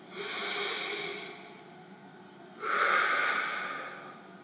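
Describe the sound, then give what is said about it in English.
Slow, deep breaths during a guided Christian prayer time: one long airy inhale followed after a short pause by a fuller, louder exhale, breathy with no talking. “Let's breathe.”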